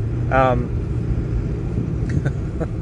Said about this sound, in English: Okay, I forgot what they were, so I was just distracted by some cars that just drove by, and I forgot what my tips were, but I got two tips.